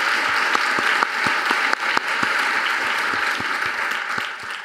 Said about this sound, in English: And I also want to give a special shout out to our Auslan interpreters who are joining us tonight. Just a round of applause to the Auslan interpreters.